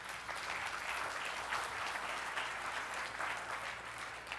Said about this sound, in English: Isn't that awesome? Give them a round of applause for that.